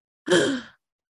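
A person performs a single sharp, breathy gasp, imitating someone jolting awake out of breath and panting. It is fairly loud and short, with silence on either side.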